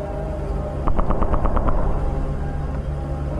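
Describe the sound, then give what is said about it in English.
A fighter jet flying overhead fires its guns at falling asteroids, a quick burst of about eight sharp, rapid shots over a steady, low roar of engine noise that continues after the firing stops. “The jet started firing at the asteroids.”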